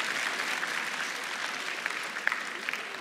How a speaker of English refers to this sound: What are y'all doing? Y'all are clapping like I did something. I sat down.